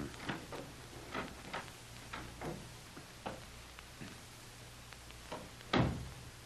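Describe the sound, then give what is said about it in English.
The door leading to the cellar steps being worked open: a string of soft clicks and rattles from the latch, then a louder knock or thud near the end, with a faint low hum underneath and no voices. “Here's the door that leads to the cellar steps.”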